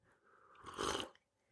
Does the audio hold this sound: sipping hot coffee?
yes